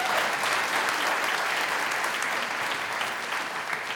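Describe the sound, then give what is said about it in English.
A crowd applauds steadily, many hands clapping in a dense, sustained wash of sound that stays loud and even throughout, with no voices standing out. “Give a hand clap for him.”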